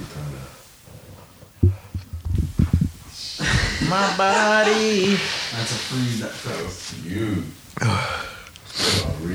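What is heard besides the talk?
sneeze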